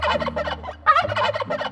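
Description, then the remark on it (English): A turkey gobbles in a rapid, rattling burst of loud warbling calls, with a brief pause before a second gobble tumbles out. “A little further down the road, they met Turkey Lurkey.”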